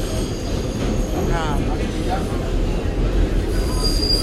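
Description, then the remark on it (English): A New York subway train running, with a steady, loud low rumble filling the whole stretch, a faint high metallic whine along the rails, and muffled voices buried in the roar. “But that's not stuff you should say when you're on the subway in New York.”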